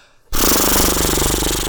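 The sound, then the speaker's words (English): After a brief pause, a person blows loud horse lips, loose lips flapping in a rapid, rattling flutter that holds steady for over a second, imitating a horse's snort. “Yep, like that's horse lips. Horse lips, because horses do that.”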